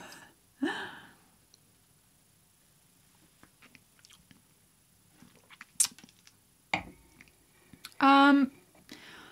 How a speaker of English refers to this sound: Oh, too much absinthe. Okay, well, let me just have one more sip. Oh my God, you guys, I'm lit already.